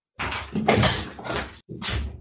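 A door being handled: a long scraping, rattling stretch followed by a short pause and one more brief clattering burst, fairly loud, with no talking.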